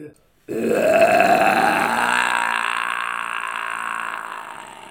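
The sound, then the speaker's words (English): A man's voice does a black-metal vocal impression, launching into a sustained, raspy growl, loud and gravelly, holding one rough low tone for several seconds before slowly tapering off. “Wait, I need to get the growl up.”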